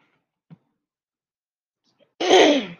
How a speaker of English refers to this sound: I'm so sorry. I'm clearing my throat.